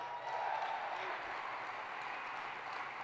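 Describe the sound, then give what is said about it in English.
A large crowd cheers and applauds continuously, a dense, roaring wash of clapping and shouting voices that stays loud and steady throughout, with no distinct speech rising above it. “You can hear the cheers in the crowd when he says that, too.”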